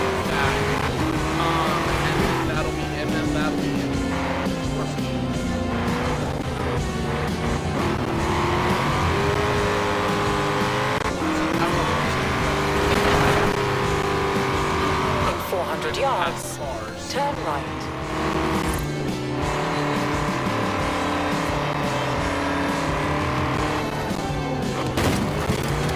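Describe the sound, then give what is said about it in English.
A video game car drives steadily and accidentally hits another car, its engine droning and rising and falling in pitch as it accelerates and shifts, with tires squealing at moments. Loud throughout. “I just hit that car by mistake.”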